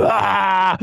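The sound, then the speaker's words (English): A voice imitates a big growl: one loud, sustained, throaty groan under a second long with dense rough harmonics, dropping off with a short grunt at the end. “Big growls and stuff.”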